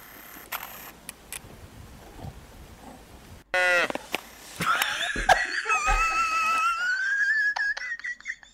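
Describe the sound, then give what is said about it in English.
A small cow-like animal gives a couple of loud moo-like calls into a microphone held up to it, the second long and wavering, after a stretch of quiet clicking and handling noise. “I can't tell if it's like a, it looks like a pig they messed up on and tried to make it into a cow.”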